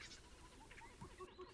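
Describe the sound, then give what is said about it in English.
Several short, squeaky, toy-like calls from American coots come in a loose, irregular series, faint, with no voices present. “These squeaky toy-like sounding birds are often mistaken for ducks, but they are actually American coots.”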